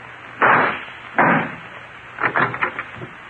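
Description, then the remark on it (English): Two loud gunshots crack out about a second apart, each with a short ringing tail, fired to shoot out the lock of a closet door, followed by a quick flurry of smaller knocks and rattles like the door being forced. “Then shoot out the lock.”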